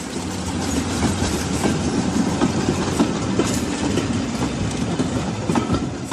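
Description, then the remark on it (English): A diesel 'Thumper' train engine thumps steadily, a dense low rumble with rhythmic knocking and clattering wheels running underneath for the whole stretch, with no voices; a type once running in southern and south-eastern areas on the Oxted and Uckfield lines. “That thumper noise, there's something about it, isn't there? If you know it, it's a proper thump, thump, thump noise.”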